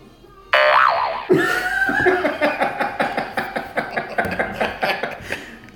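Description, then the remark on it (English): A loud, wobbly boing sound effect warbles up and down, then gives way to a run of bright, rhythmic pulses that bounce along steadily until the end, with a hint of chuckling underneath. “The sprayo yoing is the funniest sound known to men.”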